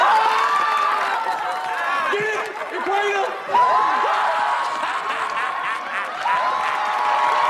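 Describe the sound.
A crowd cheers and applauds loudly and steadily throughout, with a voice talking over the noise and scattered shouts and yells rising from the audience.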